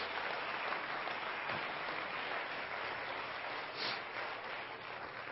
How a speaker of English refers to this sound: So I'm proud of them, and I think they deserve a great hand clap today.